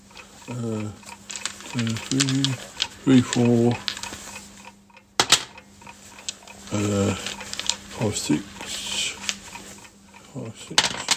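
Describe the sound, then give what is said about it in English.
Dice rattle and clatter in a burst of sharp clicks, with short pauses between rolls, while a voice counts and speaks in brief bursts over the clacking. “Let's just roll this once more time. Maybe I'll get something completely different.”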